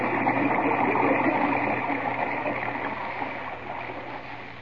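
Continuous splashing and churning water as people swim hard through water over their heads fills the whole stretch at a steady, fairly loud level before easing off slightly toward the end. No voices are heard.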